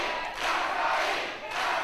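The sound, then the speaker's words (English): A large wrestling crowd chants and yells in unison, a loud, sustained roar of encouragement with rhythmic surges, without a break; they seem to be yelling 'Gumbare' (try hard), wanting Kansai to win. “Well, it sounds like they're yelling Gumbare, which is like, try hard or something like that, right? Go harder.”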